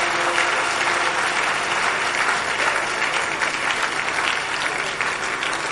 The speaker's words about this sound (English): Let's clap and give God a mighty praise in her.